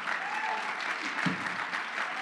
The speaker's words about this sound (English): Clap your hands if you believe God can do anything.